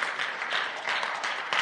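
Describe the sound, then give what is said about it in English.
A crowd claps steadily, a dense, even wash of many hands with no pauses or voices, holding at a moderate level for the whole moment. “She can clap because she knows how God provides and how God trusts.”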